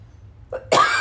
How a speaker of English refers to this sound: We're very sick, so you get to hear us cough.